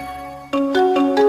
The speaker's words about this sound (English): Intel used this mnemonic for years.